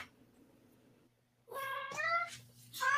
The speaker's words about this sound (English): If I don't pick the cat up, he's going to cry through the rest of this podcast. Aww. If I do pick him up, he will run away in a minute, in a couple of minutes.